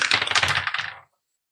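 Dice rolled for a stealth check in a tabletop role-playing game rattle and tumble in a quick burst of dense, bright clicks for about a second before abruptly settling into silence. No one speaks.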